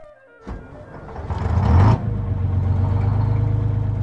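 The engine of a classic yellow school bus with Virginia license plates turns over, revs up loudly for a moment, then settles into a steady, rumbling idle.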